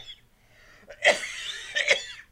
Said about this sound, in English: That Grandpa wheeze cough doesn't help the creepiness. Does not help the creepiness.